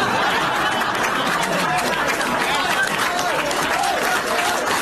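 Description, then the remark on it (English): A large Democratic Party audience laughs and applauds together, a dense, steady wash of clapping and cheering voices that stays loud and continuous throughout, with no single speaker standing out. “They're laughing and applauding this. Listen to that.”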